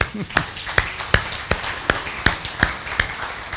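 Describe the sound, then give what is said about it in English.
An audience at a morning sermon claps together in a steady, even rhythm. About nine sharp, crisp claps land on the beat roughly three times every second, with a faint murmur of voices underneath. “Come on, we can clap.”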